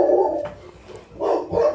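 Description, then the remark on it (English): A guard dog named Baron barks loudly at a UPS delivery driver, a few rough, harsh woofs in quick succession with a short pause between bursts, no voices present. “All right, that's my good boy guard dog there, Baron. He had to go yell at the UPS guy real quick.”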